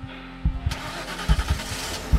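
A car engine cranks and catches, then settles into a steady, throbbing rumble with rhythmic low thumps as it speeds away across a darkened city. No voices.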